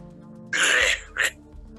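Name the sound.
cough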